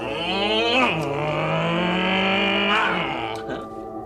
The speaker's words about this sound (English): It's a motorcycle. You ride it.